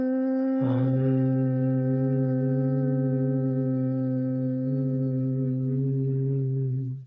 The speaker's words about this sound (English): Okay. Inhale again. And then hum.